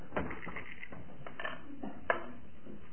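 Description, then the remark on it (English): Dice for the board game Bordo are thrown and rattle and tumble across a hard surface in a quick burst of small clicks, ending with one sharper clack as they settle. The sound is fairly quiet, with no voices. “You remember how it was poised last week, so Barry, it's your turn now to throw the dice.”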